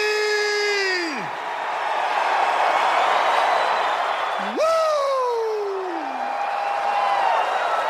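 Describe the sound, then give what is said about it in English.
A packed wrestling arena crowd in Huntsville, Alabama, on its feet, roars and cheers steadily for Ric Flair, while a single loud voice lets out two long, sliding whoops that fall in pitch above the din. “This crowd is on its feet tonight, Ric Flair.”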